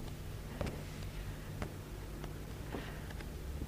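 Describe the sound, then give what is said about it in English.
Pages of a poetry book being turned: a handful of soft, brief paper rustles and flicks at irregular intervals over a low steady hum, with no one talking. “There are two other poems that I would like to read you from this book that I seem to have lost in the process of turning the pages.”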